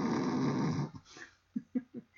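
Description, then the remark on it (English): A voice imitates snoring up close: one long, raspy, rattling snore, then a quick series of three short snorting sputters. No one speaks. “Joey puts a cartridge into Jesse's mouth to stop snoring.”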